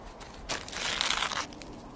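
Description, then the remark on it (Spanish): A bag being opened to check what is inside, with a burst of crisp, papery crinkling that lasts about a second, moderately loud against a quiet background, with no voices. “vamos a abrir la bolsa y comprobar qué hay en su interior.”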